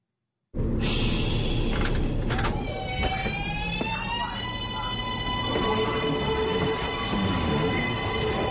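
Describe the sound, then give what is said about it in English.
A loud New York City subway train rumbles along the tracks, its heavy low roar steady throughout, with a high electric motor whine and metallic squeal rising above it. No one speaks. “First, if you have never ridden the sprawling New York City subway, welcome aboard.”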